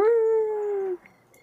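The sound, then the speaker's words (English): A single howl of a lone wolf, a clear, steady tone held for about a second and sagging slightly in pitch before breaking off, fairly loud, with no talking. “And out will come a lone wolf.”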